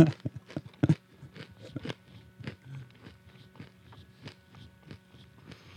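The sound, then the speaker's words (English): Crunchy chewing of a snack, a quick burst of loud crisp bites at first, then slower, softer rhythmic munching that fades over several seconds, with no one talking. “I'm going to finish chewing my”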